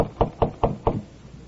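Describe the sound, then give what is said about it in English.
A tall, well-dressed man gives four firm knocks on the wooden door of apartment number 7, on the third floor of a modest downtown apartment house in a West Coast city, in late afternoon. The knocks come in a quick, even rhythm, clear, with quiet behind them and no voices. “He walks down the hall to the door of apartment number 7. He knocks.”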